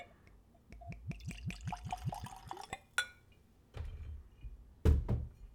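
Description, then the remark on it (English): Small barrel bourbon glugs rhythmically from a bottle into a whiskey glass, a quick series of gurgles, followed by a sharp clink and a heavier thud of glass being set down. “All right, let's do a little pour.”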